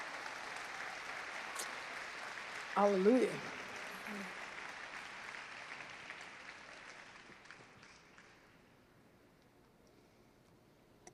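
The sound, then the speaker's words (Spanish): An audience claps in sustained applause given as a 'clap offering' during a bilingual English-Spanish sermon, the applause gradually fading away, with a brief shouted voice rising above it partway through. “You can give him a good clap offering.”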